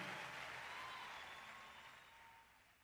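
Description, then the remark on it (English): Applause from a crowd, a dense, steady patter of many hands clapping that gradually thins and fades lower over a few seconds, with no voices. “That was the last few seconds of applause.”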